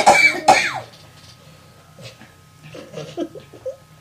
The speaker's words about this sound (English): I'm having a coughing attack because that was disgusting.